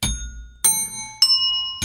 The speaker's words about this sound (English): we have our little ringer bells.